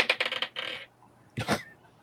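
A quick rattling clatter of dice tumbling across a hard tabletop, followed by a brief scrape and then a second short burst of clicking a moment later.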